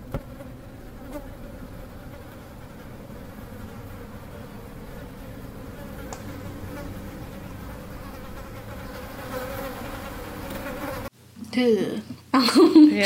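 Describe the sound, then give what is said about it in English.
A steady, droning insect-like buzz from a horror story, heralding the arrival of beings that look like people, hums continuously for several seconds, dense and slightly menacing, before cutting off abruptly into a brief, louder burst of warbling, voice-like sound at the end. “and that's kind of where the horror comes from, because we hear the awful insect-like buzzing that preludes the arrival of beings that look like people, right?”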